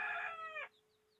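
A loud rooster crow, a bright harmonic call that ends abruptly after about two-thirds of a second, followed by a quiet background with a few faint high chirps.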